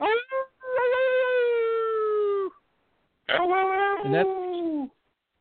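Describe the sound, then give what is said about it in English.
A dog howls in two long, sustained wails separated by a short pause, each drawn-out note sliding slightly downward in pitch, loud with no one talking. “howl sound like a wounded. Like a wounded animal.”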